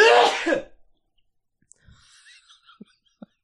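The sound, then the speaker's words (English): A single loud sneeze bursts out at the start, then gives way to quiet breathy rustling and a few faint clicks. “I think I sneezed it out.”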